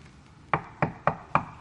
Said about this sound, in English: Knock at the door. You open the door, and who do you think handed him that letter?